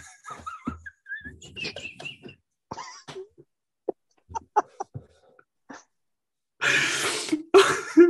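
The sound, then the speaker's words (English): A string of short, scattered throat sounds builds into two loud, harsh coughing bursts near the end, with no talking. “I had a coughing fit.”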